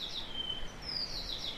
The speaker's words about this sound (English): And of course that's the whitehead, Papakatea. So one of the commoner birds in here, but unless you know your bird calls, you'd probably overlook them because they're up in the canopy and just doing their own thing, not making a big fuss